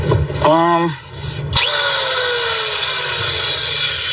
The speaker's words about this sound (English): No. I guess that's like a power. Wait. I got it. Literally? Yeah. This is a legit power tool.